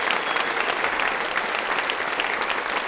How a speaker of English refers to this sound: Okay, ladies and gentlemen, massive round of applause,